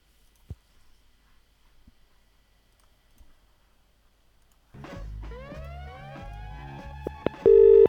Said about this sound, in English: You just hung up the phone on me.